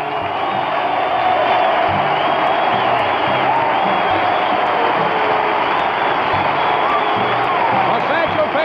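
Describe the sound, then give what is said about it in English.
A large baseball stadium crowd gives a standing ovation to pitcher Satchel Paige as he leaves the mound after three innings, with A's players in the dugout clapping: a steady, loud ovation, a dense wash of clapping and cheering that holds without a break for the whole stretch. “A standing ovation, and he has twice doffed his cap to the crowd here and actually bowed to them.”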